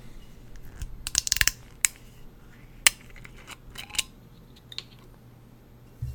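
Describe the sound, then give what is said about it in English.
A bottle of karakuchi sake, milled to 60%, being opened: a quick burst of sharp plastic clicks and crinkles, then a few single snaps and softer crackles spaced out over several seconds, with no voices. “So, let me get this opened up.”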